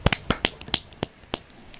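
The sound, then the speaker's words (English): A handful of people give themselves a short, sparse round of applause, with sharp hand claps landing at uneven intervals for a couple of seconds, no voices. “So I think we should give ourselves a little bit of a clap.”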